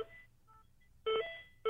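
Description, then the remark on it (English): A car's electronic start-up beeping: three short, steady mid-pitched tones with no talk, the first fainter, the last two loud and sharp, separated by brief gaps. “I've never heard a car make that really? Noise when it starts. Yeah. It was just a beeping.”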